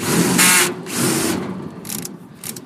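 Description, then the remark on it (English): A power drill grinds through a metal lock in several loud bursts: two long harsh runs, then shorter, weaker spurts as the bit bites. No one speaks. “So Craig is now drilling the lock.”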